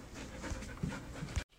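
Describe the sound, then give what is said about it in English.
A dog named True pants rapidly, with rustling and scuffling as it wrestles a sheet of paper from a producer, a few soft low thumps, before the sound cuts off abruptly. “And we're going to leave you now as True begins to wrestle that paper from our producer”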